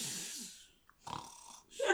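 A person snoring loudly, with raspy, breathy snores following one another in a slow rhythm, the last one rising into a harsher, rattling tone; it is the character Gabrielle snoring in a scene of Xena. No one speaks.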